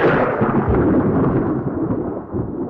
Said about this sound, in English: Was that thunder? It sounded more like a sheet of metal.